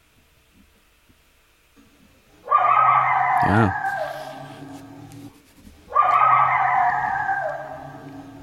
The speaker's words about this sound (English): Which other animal would you like to listen to now? Coyote.